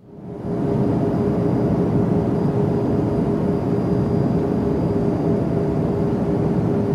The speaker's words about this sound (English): Unless, instead of standard issue iPod earbuds, you happen to be armed with something to restrain the plane din, something to ward off all of that racket.